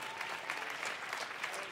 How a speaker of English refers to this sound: If you're thankful for that, can you give the Lord a great hand clap here in the auditorium?